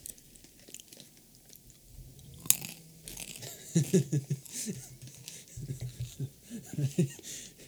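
Loud crunchy chewing of hard nuts, with irregular bursts of crackly bites and soft mouth noises, with no talking.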